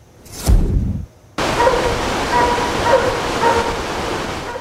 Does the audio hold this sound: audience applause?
no